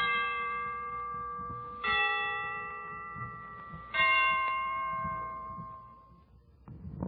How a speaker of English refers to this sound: The Christmas bells can ring anytime they're ready. Well, I imagine they're ready now. Let's listen.